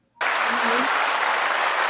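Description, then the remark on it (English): Hand clapping starts abruptly and continues as a dense, steady patter of many claps, loud, with no pauses, like a short round of applause. “Oh, I got a hand clap.”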